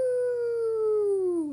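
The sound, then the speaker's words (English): Danny Dog from Peppa Pig, in a werewolf Halloween costume, imitates a werewolf howl: one sustained, tonal wail that slowly falls in pitch over about a second and a half, fairly loud, with no other sounds around it. “Suddenly they hear a howl.”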